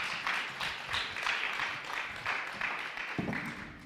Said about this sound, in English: Yeah, let's give Jason a round of applause.